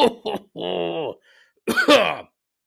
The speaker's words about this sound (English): there's that cough again.